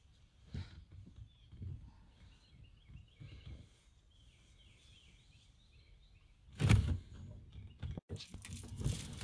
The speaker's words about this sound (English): Man, those birds just sound really good. It's very relaxing.